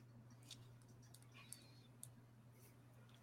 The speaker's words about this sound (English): The fact that I'm typing this out.